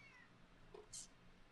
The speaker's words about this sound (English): Meow. Okay, I hear you. Meow.